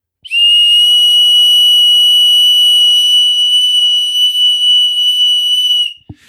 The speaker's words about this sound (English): And this free free dog whistle will attract local dogs and maybe even your dog.